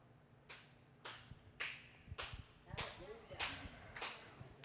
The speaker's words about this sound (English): I appreciate the clap.